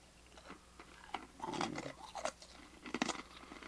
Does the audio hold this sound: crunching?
yes